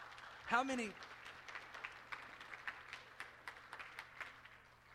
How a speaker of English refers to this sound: Would you guys give them a hand clap as they go?